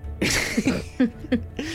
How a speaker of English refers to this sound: I think I sneeze as I say, snake eyes.